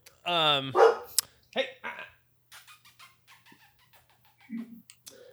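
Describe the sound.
A dog named Lily barks loudly, a quick burst of three or four yaps at the start, then quieter voices murmur in the background as the barking stops.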